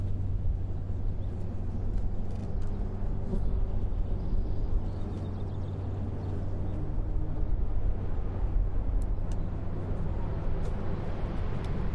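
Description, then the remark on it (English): A low, steady engine rumble from sports cars, including the course car (an Audi R8), Jaguars, a Dino and a Ferrari, fills the background, building slightly in loudness as they approach, with no one speaking. “If you listen now in the background, you can hear cars slowly getting louder.”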